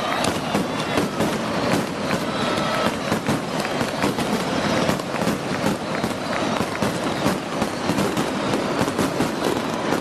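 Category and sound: sound effect, fireworks exploding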